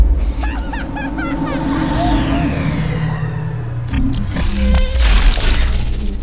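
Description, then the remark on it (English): A giant mosquito swarm buzzes loudly and steadily, a thick droning hum layered with warbling chirps at first, then swelling into a harsher, noisier roar toward the end. “That mega mosquito is going to attack it.”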